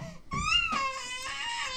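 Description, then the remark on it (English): A toddler cries and screams in a high, strained wail that rises, wavers and breaks into sobbing bursts, loud and sustained for under two seconds with no one talking. “is screaming.”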